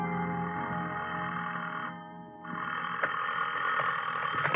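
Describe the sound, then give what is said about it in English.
A telephone bell rings loudly, a dense metallic jangle that stops briefly partway through before ringing again. No one speaks. “The only reason I woke up then was because somebody was ringing a telephone in my ear.”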